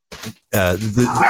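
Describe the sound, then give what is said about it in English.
A small dog barks and yips: one short bark, a brief pause, then a longer run of whiny, high-pitched yapping, fairly loud and on its own. “Okay, that's enough of that little dog.”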